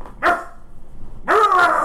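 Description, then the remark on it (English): A man imitates a dog with two loud, harmonic barks separated by a brief pause, the second longer and rougher than the first, sounding clear. “Is he literally barking like a yes. dog?”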